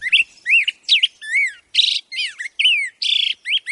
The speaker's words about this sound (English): This rollicking song belongs to a black-headed grosbeak. Like most birds, the male grosbeak begins singing in earnest a few days after reaching his traditional nesting grounds in spring.